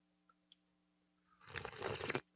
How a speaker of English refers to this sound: join me in a sip of cafecito